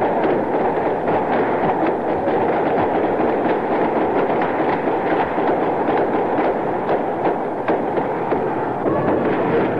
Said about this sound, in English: Early this morning, Los Angeles police moved on the local Black Panther headquarters to serve arrest and search warrants. They were met by gunfire.